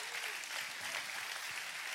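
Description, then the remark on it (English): Steady applause from an audience, a dense wash of many hands clapping at an even, sustained level with no voices standing out. “A big head clap goes there.”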